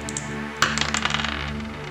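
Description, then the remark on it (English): Dice land with a sharp clack and tumble in a quick run of rattling clicks that fade within a second, a third and final roll coming up 4, fairly loud over a steady low background drone. “The dice will decide how this will play out. The roll.”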